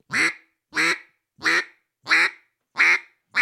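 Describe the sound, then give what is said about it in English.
A duck call blown in a steady series of six loud, raspy quacks, evenly spaced about half a second apart, clear with no talking. “It's a so if you're doing a cluck, you know, not a cluck, that's a goose calling, but a quack.”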